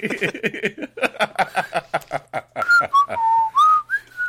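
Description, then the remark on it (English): A burst of quick, choppy vocal sounds gives way to a person sheepishly whistling a few casual, sliding notes, clear, like a nonchalant, innocent little tune. “I gently set the other two back down. Sheepishly whistle.”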